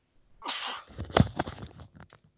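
A sudden, fairly loud sneeze bursts out, a sharp breathy blast followed by a short trailing exhale and a few faint noises afterward.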